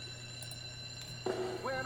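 Opening of a TV theme song: after a steady electrical hum, a bright sustained synth note enters, followed by a quick rising tone, all fairly loud and without any voices.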